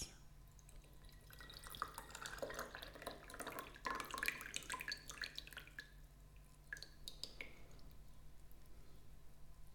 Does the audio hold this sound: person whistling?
no